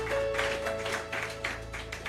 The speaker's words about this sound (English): Give the Lord a clap, offering. Oh, give the Lord a mighty clap, offering.